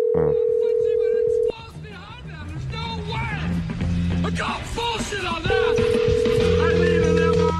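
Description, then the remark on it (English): A steady electronic telephone ring tone sounds twice, one long burst at the start and another near the end, with people talking loudly over the stretch between and no one picking up. “He's not picking up.”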